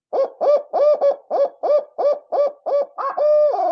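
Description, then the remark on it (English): A loud 8-note owl hoot blown on a Woodhaven Ninja owl call, in a quick rhythmic cadence, ending with an extra drawn-out single note that slides downward. No one speaks. “Add a little flair on that one, those little single notes at the end of the 8-note”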